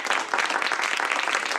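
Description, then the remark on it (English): A crowd applauds steadily, many hands clapping in a dense, even patter that stays loud throughout the short burst, with no voices breaking through, as a poem by Trapeda Mason, Poet Laureate of Philadelphia, is introduced. “Applause, applause.”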